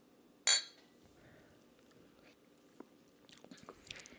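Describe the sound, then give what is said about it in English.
A single bright clink of beer glasses near the start, with a short ringing tail, followed by quiet room tone and a few soft handling and sipping noises toward the end. “Did you finally finish spilling? Yes. I'm done spilling. Gentle clink.”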